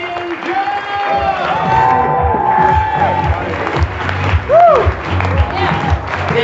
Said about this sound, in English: But hey, can we have a round of applause for everyone you've seen this afternoon? fantastic, guys.